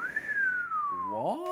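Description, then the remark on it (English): A single clear whistled tone rises briefly, then glides slowly downward in a long sustained note, ending as a voice breaks in with a short vocal sound near the end. “I'm sure that whistling is not going to be annoying through the ears and the pop filter.”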